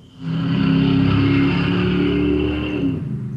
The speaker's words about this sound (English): That's like, it's either you or Jason's got drag racing going on every week. I know it. I'm way out here in the middle of nowhere, and yet there's a little subdivision, and there's an idiot that always insists on taking out of here